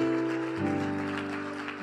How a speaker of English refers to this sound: Amen. Praise the Lord, everyone. Amen. Why don't we give God a big hand praise? If you're glad to be here, show them with the hand praise.